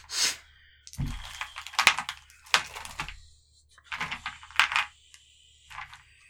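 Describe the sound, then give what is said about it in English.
A dice box opens and small hard dice clatter against each other in quick bursts of sharp clicks and rattles, fairly quiet, with no one talking. “I'm like, why am I smelling menthol when I open up my dice box?”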